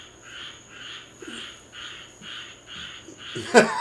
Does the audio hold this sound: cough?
no